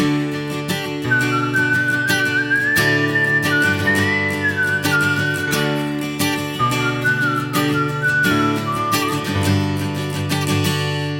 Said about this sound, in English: Here I'll whistle it again and listen to the whistled melody in contrast to the descending bass line.